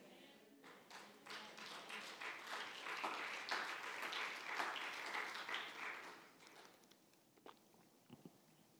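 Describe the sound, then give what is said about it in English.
A crowd applauds for several seconds during a sermon, dense overlapping claps swelling and then thinning out toward the end. “That was a good, I was like, they're clapping.”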